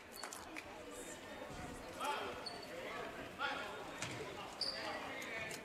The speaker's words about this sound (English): will bring the ball up right to left on your radio dial. Left-handed dribble.